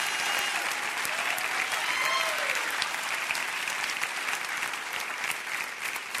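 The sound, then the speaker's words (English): A crowd claps steadily and densely, sustained applause filling the space for several seconds, with faint voices and a few rising cheers mixed in under the clapping. “Somebody clap your hands and rejoice in that right now.”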